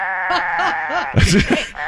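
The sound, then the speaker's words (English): Sheep bleat loudly, several wavering cries in quick succession, building into a denser, rougher burst of overlapping bleats near the end. “for all of the sheep at 12:20.”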